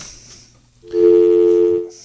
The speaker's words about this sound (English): Phones are ringing off the hook